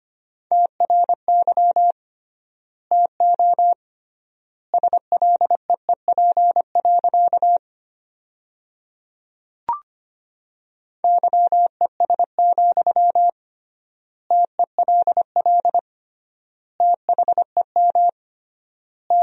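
Rapid Morse code at 25 words per minute with triple word spacing, sending sentences built from the top 500 words: a steady mid-pitched tone keyed in quick dots and dashes, grouped into words separated by long pauses, with one sharp click partway through and no voices.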